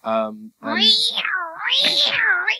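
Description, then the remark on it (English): A person's voice mimics a cat, giving a short nasal note and then a long, wavering meow that rises and falls in pitch, loud. “I'm not supposed to be the cat? No, you're not the cat.”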